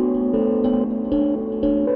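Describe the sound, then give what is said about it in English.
Sequenced audio splices from a Morphagene: a sustained, buzzy synth tone of a steel drum recording chopped in Reaper into evenly spaced chunks, jumping to a new pitch about every half second as an SQ-1 sequences the splices, each change marked by a soft click, in a steady loop with no voices. It runs through a Data Bender, mix down, and Desmodus Versio reverb. “And I'm just using the SQ-1 to kind of sequence the splices.”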